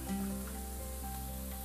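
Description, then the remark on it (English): Nacho ingredients for Dorito nachos sizzle in a pan as they cook, with a soft, steady crackling hiss that holds evenly throughout, fairly quiet, with a faint low hum underneath and no talking. “And that cook and sizzle a little bit.”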